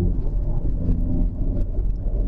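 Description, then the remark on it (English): A Hyundai i30N, 275 PS version, engine and upgraded exhaust giving a deep, steady rumbling drone, loud and continuous throughout with slight flutter, and no voices over it. “So the thing that I quite like about the Hyundai i30N is that rawness that you get from the engine, and also as well the upgrade on the 275 PS version, you also get an upgraded exhaust as well.”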